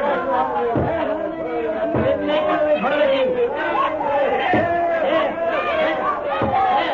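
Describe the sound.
A mob of maddened men and women shouts and yells at once in a dense, steady roar outside a handsome house where soldiers of the Revolution are battering down a door, with raised, strained cries rising above the din throughout.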